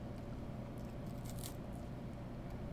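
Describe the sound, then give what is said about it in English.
A bite into a dark chocolate Kit Kat wafer, its fingers breaking apart, gives a few soft, crisp crackles and crunches, clustered in the middle, over a steady low background hum. No one speaks. “My fingers broke apart as I bit into them.”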